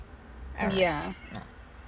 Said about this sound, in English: Hey, stop fighting! She's yelling at her cats. Yeah. It's because one of them wants to fight and Crazy's like, I'm about to freaking jump in. She's a little fighter.